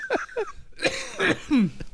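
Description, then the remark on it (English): A short, raspy fit of coughing after smoking weed: a couple of strained, voiced gasps, then several harsh, noisy coughs in quick succession, ending with a lower, wheezy hack. No talking. “Jesus Christ, take a second to cough. Feel free.”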